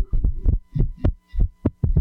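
A rapid, irregular heartbeat of the kind heard in atrial fibrillation: about seven muffled, low thumps in two seconds, spaced unevenly, fairly loud, with no voices.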